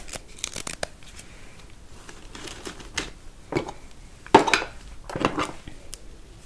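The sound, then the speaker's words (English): Quiet paper handling: soft rustles and several short, crisp peeling sounds as sticky notes are pulled from a pad, with small taps and crinkles scattered between them. “post-it notes.”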